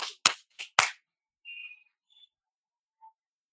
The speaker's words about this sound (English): It's 7 o'clock. People are like up on roofs right there, clapping.